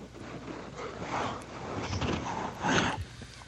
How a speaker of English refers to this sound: Sorry. Yawning. It is late.